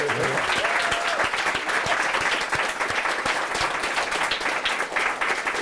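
A crowd applauds steadily for several seconds, dense overlapping claps filling the room at a constant, fairly loud level with no talking over it.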